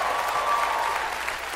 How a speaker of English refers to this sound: Now, that's a moment to clap, shout. You need to do something.